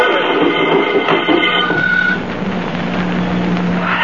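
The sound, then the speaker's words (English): A car with its brake released rolls down a road on a downgrade with a loud, continuous rumbling and grinding roar that builds and shifts in tone as it gathers speed, steady with no voices. “Look how fast it's picking up speed on the downgrade.”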